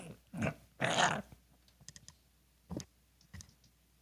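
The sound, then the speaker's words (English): Short, low growls come in clipped, staccato bursts: a couple of rough snarls close together, then a few quieter clicks and two more brief grunts spaced apart, with no talking. “And you hear, like, a low growling that's very short, like staccato, like”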